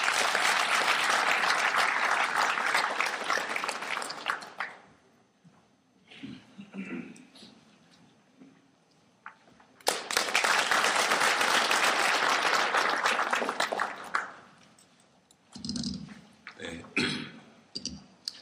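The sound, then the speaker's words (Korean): An audience gives loud welcoming applause as former Prime Minister Chung Un-chan is called to the podium, fading, then swelling again in a second long burst before trailing off, with a few scattered claps and murmurs between. “큰 박수로 환영해 주시기 바랍니다.”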